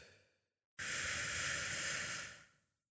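human body sound, breathing in through nose

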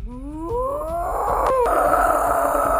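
animal, cow mooing

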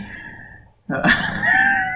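human body sound, sneeze

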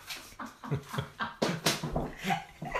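animal, dog whimpering

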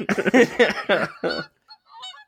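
bird, goose honking

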